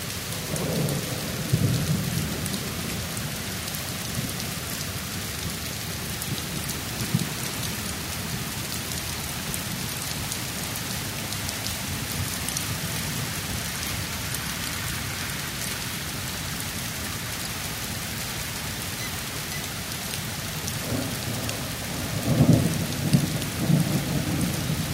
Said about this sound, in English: You've been hearing a tropical thunderstorm. Here is the car park of the Jurong Town Hall building, postcode 609431.